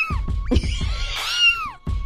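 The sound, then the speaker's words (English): High, thin kitten meows rise and fall in a few drawn-out cries, fairly loud, played over music with a low rhythmic thumping in the background. “And we had people like later on, I had somebody send us a message going, I thought that there was a kitten in my trunk the whole time or in my engine.”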